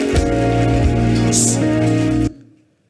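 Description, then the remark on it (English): A crowd claps its hands in a dense, steady wash of applause over a sustained musical drone, then the sound cuts off and fades into silence. “Those who are clapping, God! God!”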